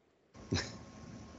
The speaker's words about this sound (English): I'm going to try to mute myself coughing during this recording. I may not get to it the entire time, and for that, I apologize. I got nothing else at the moment. Sorry, that was me fighting back a cough.